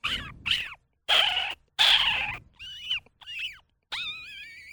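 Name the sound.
voice imitating a cat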